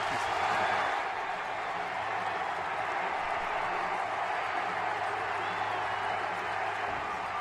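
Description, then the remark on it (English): A large stadium crowd roars and cheers continuously after Miguel Tejada's walk-off line-drive base hit in the ninth inning wins the game for the Athletics, their 19th straight win; a dense, sustained wall of noise with scattered applause mixed in, loud and steady throughout with no break. “There's a lot of cheering. I left it in here for theater of the mind, setting the stage.”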